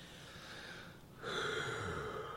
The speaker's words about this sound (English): I yawned.